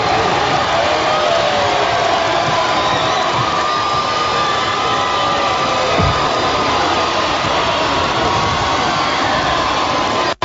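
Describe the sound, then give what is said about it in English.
A loud, steady roar of a cheering basketball crowd, Wayne Generals fans and students swarming the court after a buzzer-beater shot from the free throw line won the Class 4A sectional championship. Dense and unbroken, with jubilant shouts blending into a wall of noise that cuts off abruptly at the end. “The students come alive with cheers of jubilation.”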